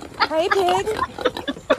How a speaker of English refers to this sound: It's a piggy. Oh my god, you're someone's pet. You've got a goddamn thing on.